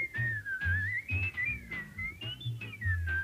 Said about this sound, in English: including whistles that your high school track coach favored when he was in a bad mood, and that guy up the street who can whistle like nobody's business.